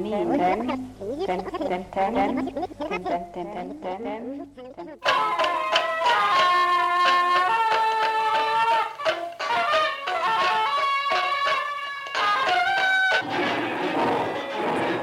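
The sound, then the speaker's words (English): Experimental music recorded around 1960–1961 by the French painter Jean Dubuffet: a dense, loud racket of sustained, wavering tones layered with buzzy noise and abrupt breaks, following an opening stretch of voice-like murmuring. “The racket that we're hearing in the background is done by the very famous French painter Jean Dubuffet, who very few people knew was a musician.”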